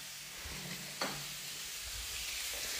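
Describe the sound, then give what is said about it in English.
A steady, hissing sizzle of a cheese sandwich frying on a hot grill, broad and crackly throughout, with a brief sharper pop about a third of the way in. No one speaks. “Right, so you got your cheese. It's grilling, everybody.”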